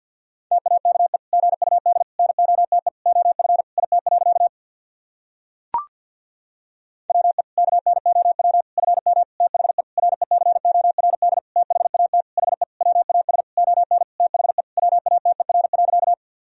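Fast Morse code at 50 words per minute sending practice sentences built from the top 500 words and abbreviations. A single steady mid-pitched tone is keyed into rapid dots and dashes, pausing once with a brief click before the sending resumes.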